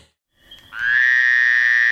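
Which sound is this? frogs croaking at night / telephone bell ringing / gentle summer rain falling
frogs croaking at night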